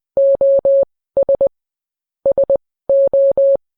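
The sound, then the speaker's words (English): A single steady, clear electronic tone keys on and off in wireless Morse code beeps, alternating groups of three long dashes and three quick dots, loud with silent gaps between groups. “sending a wireless Morse code.”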